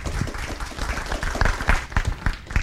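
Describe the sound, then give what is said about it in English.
A crowd applauds a speaker after a talk on parking and sustainable transportation planning, a dense patter of many hands clapping at once, with a few sharper individual claps standing out, holding a fairly even loudness throughout. “Let's have a round of applause for Lindsay.”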